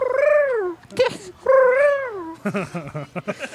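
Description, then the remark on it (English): A voice imitates crying doves: two long, loud wavering wails that arch up and down in pitch, followed by a burst of short, choppy vocal sounds. “If you send doves, make sure they're not crying. I don't want to know what that sounds like. It sounds like...”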